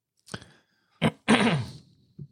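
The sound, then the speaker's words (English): Mouth sounds of someone sipping bourbon: a brief slurp, a quick second sip, then a longer breathy, throaty exhale and a small final smack. Nobody speaks. “Oh, you got to take another sip.”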